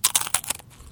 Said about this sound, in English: just pulled out a pretzels. Very crunchy.